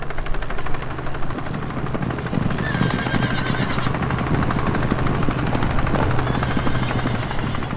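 A helicopter flies loud, its rotor blades beating a rapid, steady chop over a low droning engine rumble that holds for the whole stretch, with no voices.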